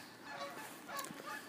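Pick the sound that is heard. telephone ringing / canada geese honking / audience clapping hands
canada geese honking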